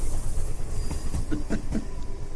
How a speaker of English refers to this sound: So, Gunny, bring that train in.